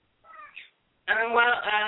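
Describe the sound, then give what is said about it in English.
A cat meows twice: first a soft, short mew, then after a brief pause a long, loud, drawn-out meow that fills the rest of the moment. “I hear the cats in the background.”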